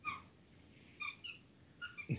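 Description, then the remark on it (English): A dog named Cooper chews a squeaky squirrel toy, producing a handful of short, high-pitched squeaks in irregular bursts, fairly quiet, with a soft low thump near the end and no talking. “What the hell is that noise? That is Cooper chewing on a squirrel. Squeak.”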